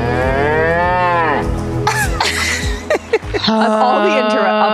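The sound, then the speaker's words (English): A cow moos loudly, a long drawn-out low call that bends in pitch, followed by a sharper honking bellow near the end with brief rustling in between. “I do think after the cow mood, I would just kiss again.”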